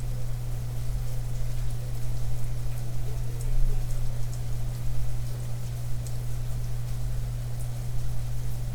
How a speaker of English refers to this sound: Wow, the rain is so pretty.